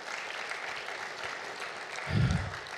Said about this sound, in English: Let's applaud the Lord Jesus on that one, guys, and we'll finish this passage.